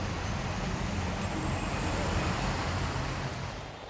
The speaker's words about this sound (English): Cars are really struggling to pass through this sea of a road, and the water really comes pretty close to the door handle of a normal sedan.